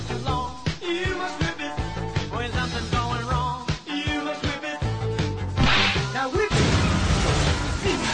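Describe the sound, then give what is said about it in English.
Sharp whip cracks snap repeatedly amid swishing whooshes, loud, over a dense, busy backdrop, ending in a couple of longer noisy bursts. “I didn't want to do this, but it's time to whip it good!”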